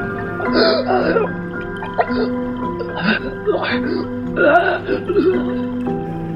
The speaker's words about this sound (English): Strangling.